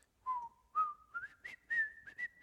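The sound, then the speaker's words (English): A man whistles a short tune alone for children, teaching them the song: a clear series of notes that climbs steadily in pitch, with brief breaks between phrases, fairly soft. “And he broke into a whistled song for the children that he taught them and then had them whistle along with him.”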